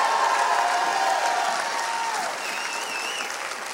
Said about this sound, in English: Come on, if you're part of this army, clap your hands one more time and give God the mightiest shout of praise. Come on, give Jesus the biggest hand clap you've ever given anybody.